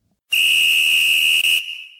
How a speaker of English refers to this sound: It's time for our 2-minute drill. Just making sure. I sound the whistle, and then I go first, right?